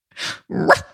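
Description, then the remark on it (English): A person imitates a dog with two quick, loud barks in close succession, the second rougher and more growly, with no other talk around them. “And you could start barking. Maybe I will.”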